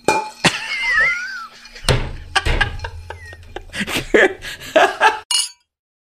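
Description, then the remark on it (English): Heavy glasses that take two hands to lift clink together in a toast, a few sharp bright knocks with a brief ringing tone, followed by scattered clatter and some muffled chuckling. “You have to lift two hands to lift this fucking. Cheers.”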